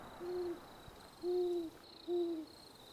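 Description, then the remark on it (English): Three steady, low owl hoots spaced about a second apart, each a smooth sustained tone, over a faint constant high-pitched hum of insects in the background. “Owls, of course, can find their prey very easily with hearing.”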